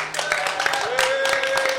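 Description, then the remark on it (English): An audience at the Barbican's Life Rewired event applauds, dense overlapping claps forming a steady, continuous roar for the whole clip, with a thin sustained tone riding above the clapping. “Can you all give everybody, our wonderful audience, a huge round of applause?”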